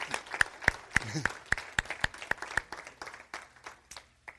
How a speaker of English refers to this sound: Would you give Jesus Christ a big round of applause?